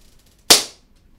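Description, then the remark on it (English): A single sharp hand clap, loud and crisp, snapping out of near silence and ringing off briefly before the quiet returns. No one speaks. “Okay, and I'm going to clap for the camera.”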